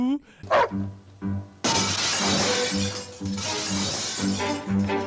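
A dog gives a few sharp yelps as it is thrown through a stunt glass window; the window bursts with a loud crash, and broken glass keeps clattering and tinkling down for several seconds.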